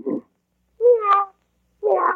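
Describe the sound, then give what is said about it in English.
A cat meows three separate calls spaced about a second apart, the middle one a long, clear, wavering meow, with silence between calls and no talking. “Meow.”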